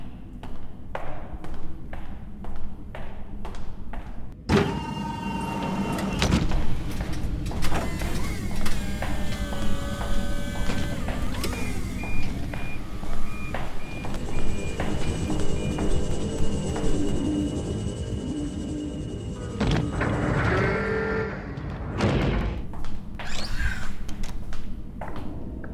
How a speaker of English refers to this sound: I see the dropship on approach and have the bay doors ready to receive.